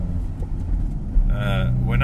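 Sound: car driving in traffic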